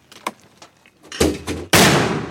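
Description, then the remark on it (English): Light metallic clicks and handling noises, then two sharp thumps and a loud, booming launch of a mortar round from a metal tube set on a tripod, fired by Marines in training, that roars on and fades slowly. No talking. “Recently, we watched some Marines train, launching them out of metal tubes set on tripods.”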